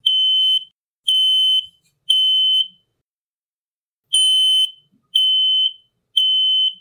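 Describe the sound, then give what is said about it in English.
A smoke detector alarm in the foyer of a house, set off by smoke from burned pancakes, blares loud, shrill beeps: three long tones in a steady rhythm, a brief pause, then three more, with no voices. “Before Daddy Peters could finish the sentence, the smoke detector in the foyer began its shrill warning throughout the house.”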